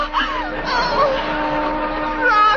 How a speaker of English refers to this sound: Listen, a whistle. Oh, it's the old tack factory.